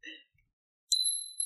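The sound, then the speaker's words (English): A nail dropping onto a hard floor: a brief tinkle, a short pause, then a sharp metallic clink that rings on with a high, steady, bell-like tone until the end. “It's a nail.”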